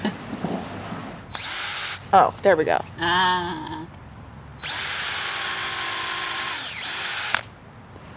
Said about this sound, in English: This log is really hard. Yeah. I swear I know how to use a drill.